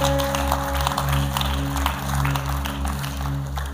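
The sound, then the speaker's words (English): An audience at a worship service claps steadily in a dense, continuous patter over sustained organ or keyboard chords with a deep bass drone, with no voices standing out. “Don't stop worshiping. Don't stop clapping.”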